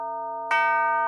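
A mantel clock chimes: one resonant strike is already ringing when a second, louder strike sounds halfway through and hangs in a bright, sustained metallic tone. Clear, with no voices.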